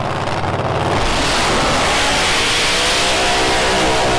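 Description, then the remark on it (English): An AC Delco Holden Monaro drag racing car's engine rumbles low as it comes in, then erupts into a loud, sustained roar as it revs hard, filling the whole clip with raw mechanical noise and no talking. “You can see over here there's a very serious drag car coming in.”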